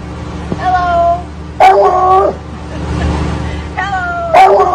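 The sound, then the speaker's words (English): A dog lets out drawn-out, two-part howling yelps that mimic a spoken greeting of hello, repeated a few times with brief pauses, loud against a steady background hum. “It's a dog that can say hello.”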